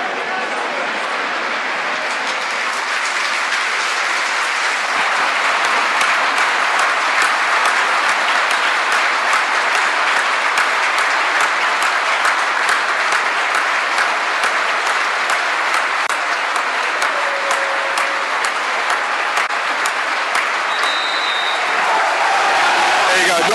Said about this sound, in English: Silence, but a minute's applause. It was also a minute's applause for Jules Fisher, George's mill shirt from the 1945 Cup final was being displayed by a couple of young naval cadets in the middle, as well as a memorial, of course, for Albert McKenzie